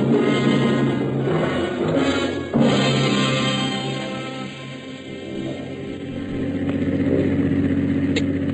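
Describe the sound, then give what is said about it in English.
A car engine drones steadily throughout as the vehicle drives along, its pitch shifting slightly as it speeds up and eases off, loud with no talking. “Is Bronson following in the car behind us?”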